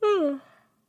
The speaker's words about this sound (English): I'm talking too much, you guys. It's making me yawn.